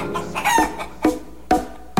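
A rooster crows in a strained, harmonic call, followed by three short, sharp bursts spaced evenly about half a second apart. No voices.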